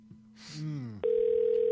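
After a brief low murmuring voice, a loud, steady telephone dial tone starts abruptly and holds unbroken and clear until the end, as a call is placed to a number that has been calling in repeatedly.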